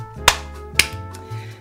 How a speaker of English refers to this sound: Beginning with the clappity clap. The syncing. By the way, I do this to sync the audio and the video, so here it goes.